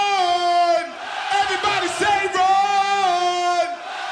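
A large live crowd yells in unison, chanting a one-word name in long, drawn-out shouts about three times. The sound is loud and sustained, with a brief dip between chants.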